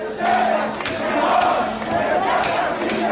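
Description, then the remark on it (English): A large crowd of tens of thousands of street protesters in Beirut, Lebanon, protesting after the explosion, roars and chants in a dense, continuous wall of voices, with sustained shouted tones rising over the steady loud din. “This past weekend, tens of thousands of protesters took to the streets.”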